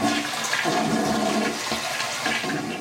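toilet flushing

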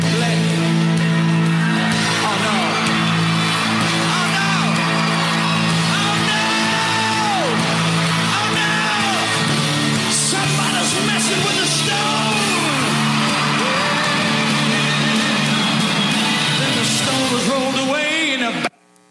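audience cheering

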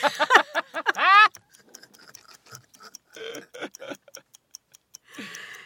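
ticking clock timer

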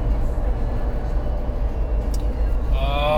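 car interior noise

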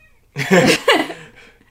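cat meowing

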